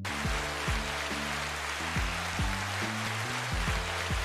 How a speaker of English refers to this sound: So applause for Kyrie Beast. Applause for him.